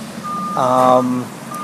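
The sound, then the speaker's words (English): A big truck's reversing beeper sounds a steady high tone as it backs up, joined midway by a louder, harmonically rich burst, likely the engine or horn, before fading back to the lone beep. “A big truck is backing up, apparently.”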